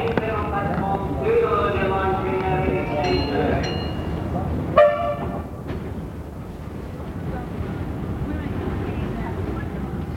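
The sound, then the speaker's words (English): A train bound for Kooyong approaches with a steady, broad rumbling roar. Whining tonal notes rise over it in the first few seconds, and a single sharp metallic clank cuts through midway before the rumble carries on. “I can just hear a train coming.”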